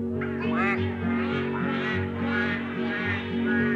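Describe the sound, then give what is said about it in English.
A run of nasal, duck-like quacks, probably a voice imitating a duck in a song about farm animals, repeats in quick bursts over steady, droning musical accompaniment, moderately loud. “The duck went.”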